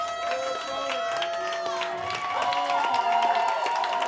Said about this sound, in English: Round of applause right now.